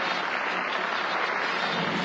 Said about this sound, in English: Can you even hear them clapping in the movie?